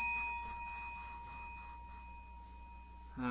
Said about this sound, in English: What bell was that for? That was foreshadowing. Oh, it's not the It Gets Better bell? No.